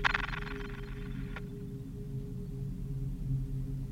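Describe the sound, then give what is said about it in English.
A mobile phone rings with a short electronic tone that sounds once for just over a second, bright and buzzy, then cuts off abruptly, leaving a steady low hum underneath. “Wait, your phone.”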